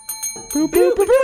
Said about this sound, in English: I, like, looked down and just started tapping the bell. I was like, where's the boop boop? I was like, oh, wait, this is my cue.